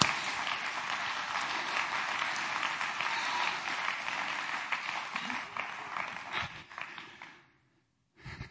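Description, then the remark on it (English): An audience claps hands in praise to the Lord in a dense, steady burst of applause for about seven seconds, then it fades out to a short silence before a brief final rustle. “Come on, clap your hands to the Lord and give Him praise today.”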